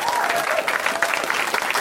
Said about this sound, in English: I feel guilty I clapped for you guys like this. No one could see me.